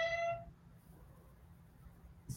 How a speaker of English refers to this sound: Do y'all hear this? What in the hell? Now, because I've been ignoring Scotty, he has brought me this donut cat toy, meowing like he's bringing me prey that he caught me.